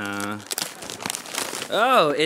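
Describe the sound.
Wrapping paper rips and crinkles in a quick flurry of sharp, papery bursts lasting about a second as a gift, a box of coconut-flavored LaCroix water, is opened during a gift game, with voices briefly talking just before and right after the tearing.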